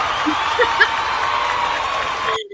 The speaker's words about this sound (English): Is that a round of applause because you're going to be by yourself?